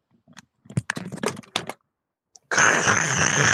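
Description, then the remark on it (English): Loud crunching from biting into a popcorn ball: a burst of sharp, irregular crackles, a brief pause, then a dense, rough crunching noise that carries on to the end. “The most audible crunch.”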